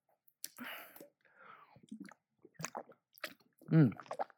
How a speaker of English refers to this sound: I've just drank out of my water bottle.